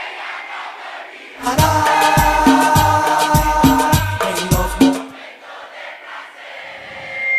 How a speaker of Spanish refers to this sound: le vamos a cantar ese coro. ¿Cómo dice? Uno, dos. Dile. Dile.